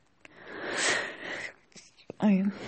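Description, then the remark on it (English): A long, breathy intake of air builds up, then a brief catch and a loud, voiced burst of a sneeze that trails off with a strained tone. “I had to sneeze.”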